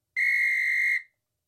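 A single sharp, steady whistle sound effect played from a soundboard, lasting just under a second, loud, with a clean high pitch that cuts off abruptly. No voices accompany it.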